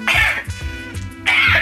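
coughing and throat clearing

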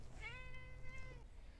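cat meowing

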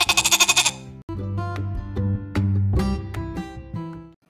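goat bleating

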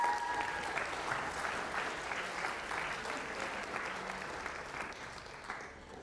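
audience round of applause

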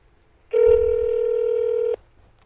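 telephone dialing and ringing

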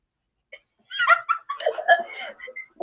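dog whimpering

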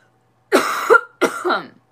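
coughing

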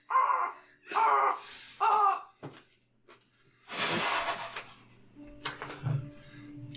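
crow cawing

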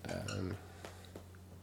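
bell being rung

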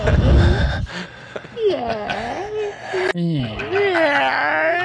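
heavy breathing

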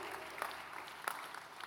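audience clapping hands

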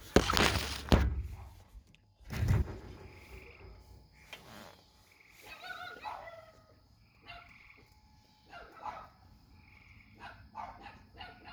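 dog barking

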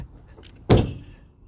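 car door closing

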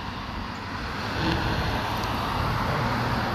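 cars passing on road

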